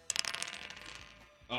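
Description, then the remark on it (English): Dice clatter across a hard surface in a quick burst of clicks and rattles, then tumble to a stop, moderately loud, with no one speaking over them; they are rolled to set a player's handicap in a quiz game and come up six. “if you'll roll the dice, you set your handicap at 15, but roll the dice, whatever that number is, we'll take off the number 15.”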